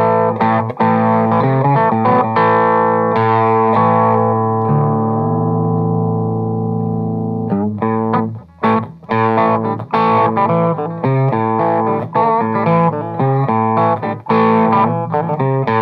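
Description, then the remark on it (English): An electric guitar played through the right side of a Jekyll and Hyde overdrive pedal, with the amp set fairly clean, gritty and loud: a few struck chords ring out into a long sustain, then choppy rhythmic strumming follows, with no talking. “I can get an overdrive through the amp, but I'll set it where it's got enough volume to be fairly clean, but then I'll use the right side of the. Jekyll and Hyde, and just to give a little edge.”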